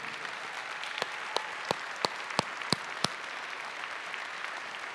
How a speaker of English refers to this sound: Come on. Can you give these gentlemen a big round of applause?